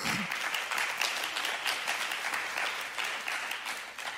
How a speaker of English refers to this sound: Can you hear the crowd? Can you hear the cheers? They're rooting for you.